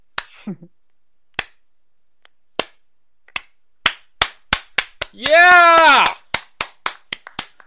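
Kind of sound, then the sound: crowd, slow clapping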